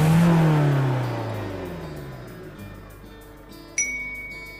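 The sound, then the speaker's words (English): The small engine of Otis on a farm hums loudly, its low drone sliding down in pitch, then settles into a quieter, steady putt, puff, chuff of regular chugging pulses, with a brief sharp clink near the end. “On occasion, he would chase a rabbit or play ring around the rosy with the ducks to the sound of his steady putt, puff, puttity, chuff.”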